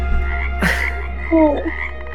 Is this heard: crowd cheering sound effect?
no